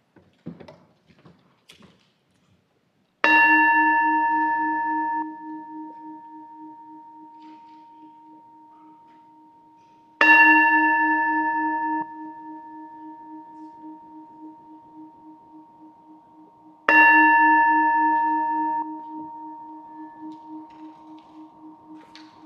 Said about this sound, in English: And now, Hallie will ring the bell to call us into worship.